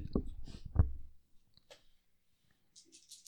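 dice being rolled

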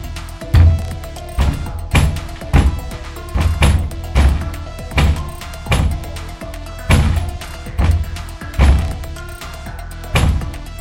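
pounding on a door

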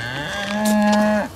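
cow mooing

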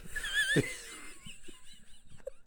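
person snoring

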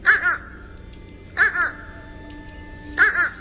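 fish crow calls

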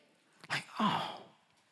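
sneeze

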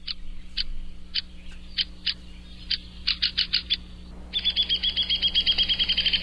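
downy woodpecker call

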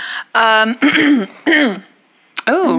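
throat clearing

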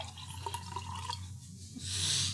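liquid dripping

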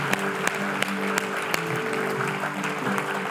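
audience applauding

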